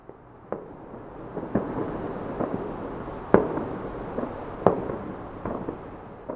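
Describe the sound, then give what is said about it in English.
New Year's Eve fireworks bang repeatedly, a scatter of sharp pops and booms at irregular intervals, two louder cracks standing out over a continuous rumbling wash of explosions with no voices. “As sound travels at 343 meters a second, I should manage to hit record before the explosion arrives, as long as my attention is kept on the scene in front of me.”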